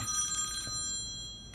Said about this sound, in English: That's an old school ringtone. I love it. I like it too.